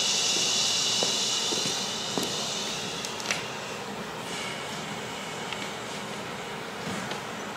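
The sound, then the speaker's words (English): A long, breathy "shh" exhale during a guided breathing exercise: a steady, fairly loud hiss that holds for about three seconds, then eases off into a softer, continuous rushing sound with no talking. “On this next exhale, can you make a sound with the exhale going shh?”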